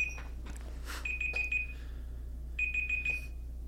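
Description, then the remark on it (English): A timer going off gives two bursts of rapid, high electronic beeps, each a quick run of four or five pips, separated by a short pause, over a low steady hum and faint background noise. “Oh, it's this beeping. Oh, the timer going off.”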